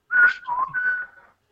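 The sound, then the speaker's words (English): A person whistles a short three-note phrase, the pitch stepping down and then rising again. Clear, lasting just over a second with no other sounds. “Perhaps it's like a black pudding out for a stroll, just whistling along.”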